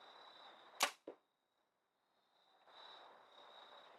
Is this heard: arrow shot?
yes